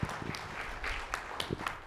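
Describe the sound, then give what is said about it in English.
A crowd applauds a performer after a reading of the Christmas nativity story, a steady wash of fairly soft clapping with a few sharper individual claps standing out through the dense noise. “Give it a round of applause for him.”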